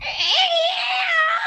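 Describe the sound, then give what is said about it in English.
A person's voice imitates a violin making a cat sound: a single sustained, shrill yowling screech that rises at the start and then holds steady, fairly loud, scratchy like a violin. “I desperately needed you to laugh at my impression of a cat”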